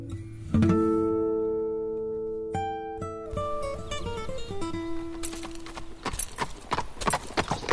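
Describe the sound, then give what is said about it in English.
A held musical chord swells and shifts, then the hooves of a saddled horse being ridden start clip-clopping, a quick uneven run of sharp knocks growing louder toward the end. “just where do you think you're going on that horse?”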